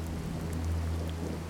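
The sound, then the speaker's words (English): A steady wash of rain falls continuously, soft and diffuse, over a low constant engine-like rumble, with no voices present. “I squinted my eyes, trying to see past the rain.”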